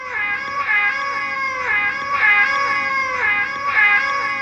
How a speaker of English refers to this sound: Y'all, it's the kitty cat of the one and only Shy Yeti. Y'all, it is little Deely.